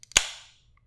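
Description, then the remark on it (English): A 24-ounce tall boy can of Coors Light cracks open: two faint clicks of the tab, then a sharp, bright pop that trails into a fizzy hiss fading out over about half a second, with no voices. “I know it's the perfect time to drink it, and I'm going to finally, after long delay, crack this baby open.”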